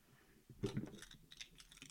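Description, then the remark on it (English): A brief metallic jingle of keys being handed over, a quick rattling clatter with a few sharp clicks over about a second, fairly quiet and without any voices. “you left your keys.”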